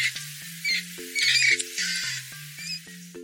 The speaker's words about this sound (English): Mice, they squeak.